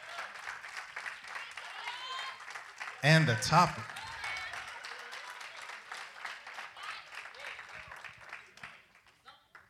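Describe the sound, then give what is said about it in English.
A church audience gives God a hand clap, applauding steadily for several seconds, a dense wash of many hands clapping that fades near the end, with a man speaking briefly over it. “Let's give God a hand clap for the text”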